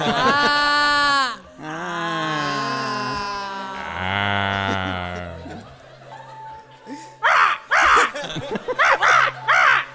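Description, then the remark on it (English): A person imitates a crow's caw with several long, drawn-out, throaty calls, then a quick run of short, breathy bursts like chuckling. “What's the bird that goes like that sounds disappointed at the end? That goes ah. Crow.”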